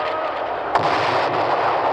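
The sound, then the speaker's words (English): Fireworks bursting into streamers and showers of stars: a dense, loud, steady crackling roar with a sharp bang standing out about midway and another fainter pop soon after, no voices. “Look, streamers, a shower of stars. It's marvelous.”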